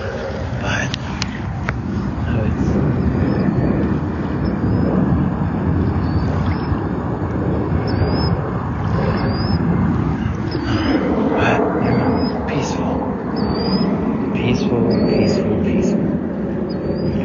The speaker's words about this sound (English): I don't know how much you can hear the waves, but oh, we do have a little bit of waves going on here.